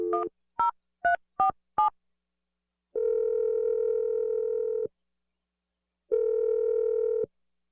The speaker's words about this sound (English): Let's give this a try, okay? I'm going to dial Andrew's phone number and let you make your awkward Tuesday phone call, okay, Aaron?